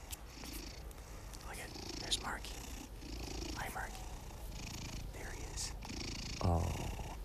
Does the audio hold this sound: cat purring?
yes